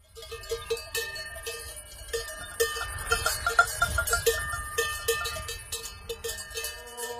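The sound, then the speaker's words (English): A jingle played on the Sky Metro at Zurich Airport as passengers travel from plane to terminal in Switzerland: bright, clanking cowbells ringing in an irregular patter over a low rumbling background, with a high, tonal melodic chime weaving through the middle. No one speaks. “Switzerland, defined in sound by the cowbell.”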